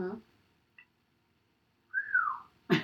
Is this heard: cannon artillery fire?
no